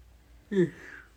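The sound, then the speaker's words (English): A short, breathy yawn with a low voiced groan at the start, drawing out into a softening exhale for about half a second before silence returns. “You got a little yawn in there.”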